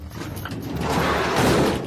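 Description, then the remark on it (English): A door being unlocked, heard as a continuous rattling, scraping mechanical noise that builds slightly and holds for about two seconds, fairly loud, with no voices. “Just unlocking the door.”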